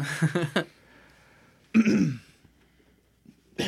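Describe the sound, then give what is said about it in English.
A voice imitates a hacking cough: a short cluster of harsh, raspy bursts, a longer gurgling hack after a pause, then another rough burst just starting at the end. “Just coughs up a bat.”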